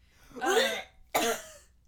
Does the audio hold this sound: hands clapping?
no